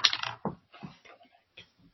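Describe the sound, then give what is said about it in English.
Dice are rolled to pick a film, clattering and rattling in a loud burst, then tumbling with a few lighter clicks and taps that fade out over the next second and a half. “Okay, roll that dice.”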